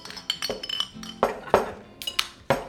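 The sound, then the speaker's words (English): Tavern ambience inside Blake's Tavern: glasses clink and chime repeatedly at an irregular pace, a few sharp ringing knocks standing out over a low, steady bed of background bustle. “Announcer says, we start this adventure inside Blake's Tavern.”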